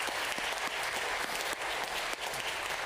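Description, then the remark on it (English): A church audience breaks into steady, continuous applause to affirm a ministry decision, dense clapping from many hands holding an even loudness throughout with no voices rising above it. “would you please let us know by just sharing a round of applause”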